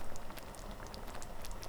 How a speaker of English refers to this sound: The howling wind sounds like a soft whisper that accompanies the gentle bubbling sound of the apparatus and the lively crackling of the fire.